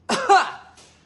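A fairly loud cough in two quick harsh bursts, trailing off into a faint breathy tail, with no talking around it.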